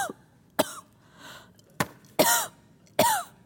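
A series of about five sharp coughs spaced irregularly, some with a short voiced, rasping tail, fairly loud, with no talking in between.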